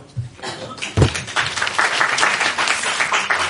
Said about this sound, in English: The applause goes to them.